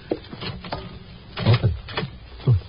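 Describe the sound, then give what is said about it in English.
The door handle of room 612 rattles and clunks a few times, then the door bumps and scrapes open in a short series of moderately loud knocks and thuds, with no talking. “Randy, try the door.”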